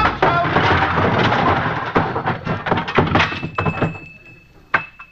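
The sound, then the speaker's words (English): In an Abbott and Costello radio comedy, a long, loud avalanche of junk tumbles out of a closet after Costello goes in the wrong door, with a dense rumble of clattering and banging that slowly thins into scattered thuds, ending in a final tinkle and clunk. “Yeah, Costello, you're going in the wrong door. That's a closet.”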